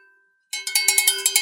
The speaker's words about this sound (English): What would the bell be for? That's got to be for something special. I got myself a bell.